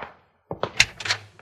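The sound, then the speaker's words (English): A knock at the door: a short run of sharp, hollow raps, three quick ones followed by a couple of softer thuds, moderately loud, with no talking. “Now, who could that be, Bill? You know a good way to find out, Jingles? What's that? Open the door and see.”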